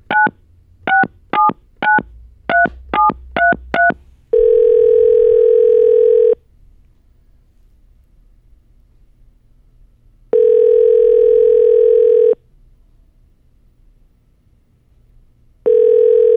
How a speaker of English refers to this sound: Never had to go three rings before. Pick up.